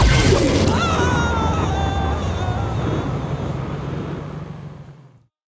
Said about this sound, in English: What happened? I punched you with my force field.